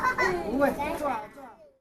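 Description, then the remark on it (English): A group of children, accompanied by their parents, cheer on a tourist ship at Yundang Lake in Xiamen, their high-pitched voices overlapping in lively shouts that hold steady for over a second before trailing off into a single fading call. “Kids accompanied by their parents are cheering on a tourist ship, which will take them to get a closer look at the egrets and other wild birds.”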